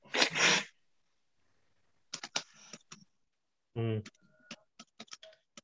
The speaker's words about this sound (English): Are you just purposely pressing the space bar now to make me think you're typing stuff in?